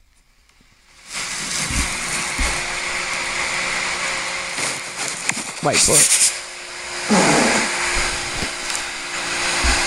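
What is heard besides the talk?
fart played from phone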